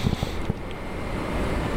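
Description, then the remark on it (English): A steady, rushing roar of a train passing a train station, heard outdoors behind some buildings on a hot summer day, loud and unbroken throughout, with a few soft low thumps near the start and no voices. “There goes the train right now.”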